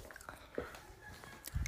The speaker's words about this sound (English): So yeah, sorry if I'm chewing too loud, but yeah.